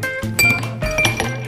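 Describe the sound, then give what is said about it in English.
Ice cubes clink against a glass of Jack whiskey on ice a few times in quick succession, bright, with a faint low hum underneath and no talking. “Cheers. Get you something. Get a drink. I'm drinking Jack on ice.”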